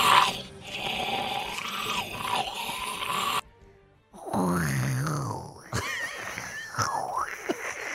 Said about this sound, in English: I want to hear the Walking Dead zombies.